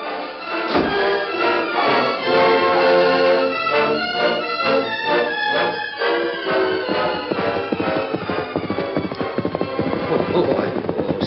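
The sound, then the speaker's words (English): Horse hooves clip-clop in a steady trotting rhythm as a rider departs on horseback for town, the hoofbeats mixed under loud, full music that fills the whole scene. “I'll ride into town now and see the parson.”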